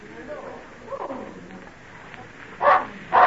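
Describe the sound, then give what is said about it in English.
A dog named Badger gives two loud, sharp barks in quick succession near the end, following a few seconds of quiet, muffled background sound. “What be old Badger speaking up about? Oh, must be a stranger. I've not heard Badger bark like that before.”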